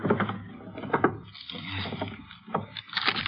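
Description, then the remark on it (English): A wooden desk drawer full of Christmas candies being pulled open, with a few sharp knocks and a rough sliding scrape between them, fairly loud and uneven, with no voices. “Let's have a look at this desk.”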